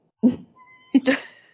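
One person sneezes: a short voiced intake of breath, a brief pause, then a sharp, breathy burst that trails off quickly. Nothing else is heard.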